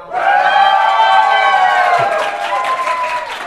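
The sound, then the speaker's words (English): A small live audience cheers and applauds together on request, a steady wash of whoops, voices and clapping that holds at a fairly loud level for a few seconds before thinning slightly. “So can we get like a cheer or like an applause?”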